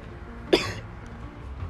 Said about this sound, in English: You know, up in here coughing on my podcast. It's life, but it's okay.